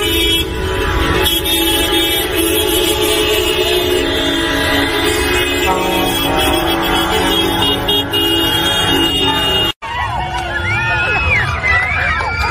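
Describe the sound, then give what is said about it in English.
A loud, continuous blare of many car horns honking together in a sustained, overlapping chorus from a convoy in Australia, cutting abruptly near the end to a few seconds of voices. “So people are getting their cars involved now.”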